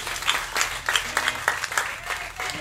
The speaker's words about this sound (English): And give yourselves a round of applause for making this happen. Thank you very much, guys.